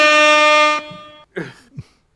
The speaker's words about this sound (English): Where's my air horn? I was promised an air horn, not the... Wait. Thank you!